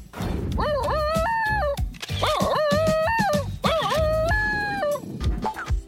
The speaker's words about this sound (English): Bit of a yodel or a whine or a crowing sound. The larynx of the Basenji is a different shape than that of a normal dog. As air is forced through the larynx, instead of getting a barking sound like other dogs, you get a yodel or a baru.